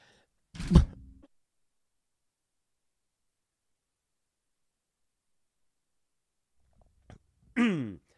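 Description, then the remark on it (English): A loud, harsh cough bursts out near the start, followed by a long stretch of silence, a faint click, and then a brief voiced, throaty sound at the very end. “And there's the one coughing fit per show.”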